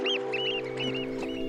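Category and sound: bird, oystercatcher calls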